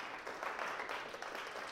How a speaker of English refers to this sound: I would ask you to look around this room and to give a round of applause for everyone who's inviting somebody to church, for somebody here today.